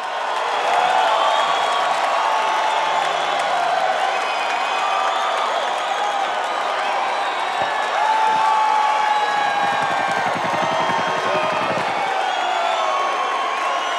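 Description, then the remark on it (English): A large live concert audience in Grand Rapids roars with sustained cheering, whoops and applause, a dense, steady wall of crowd noise that stays loud throughout with scattered shouts rising above it. “So let's hear the crowd and really get the picture of what was going on this night.”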